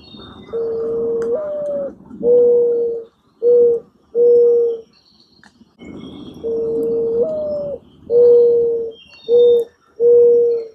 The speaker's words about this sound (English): I sent Roger's question over to our research department, and she said that those are morning doves. Morning doves. Okay. Morning doves. Yeah. We have those in our backyard now that you mentioned that.